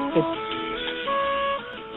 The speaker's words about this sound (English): I need to fix the vacuum.